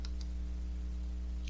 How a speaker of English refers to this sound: I hear a lot of clicking going on over there. Oh, you can hear that?